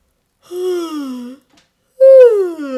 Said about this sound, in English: So let's start with a good yawn stretch.